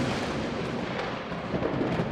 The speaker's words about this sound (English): Damnable racket, this storm will be the death of me, Eliot.